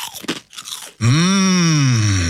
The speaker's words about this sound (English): Penny's Crispy Pork Crackling is slow cooked for that big crunch and taste. Put some crunch in your munch.